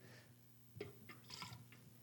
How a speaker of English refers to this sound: So we dump that out, a little trash can of water.